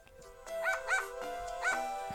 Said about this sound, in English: They sound excited. Playing. Yeah, so I got I got two beagles and a German shepherd.